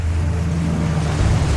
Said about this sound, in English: The rest of you who are just kind of flying as you kind of set your feet, you find yourself standing in an underwater cavern, and we can begin. The sound of crashing water all around you.